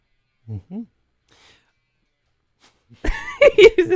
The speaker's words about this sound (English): Sorry, I just had a cough.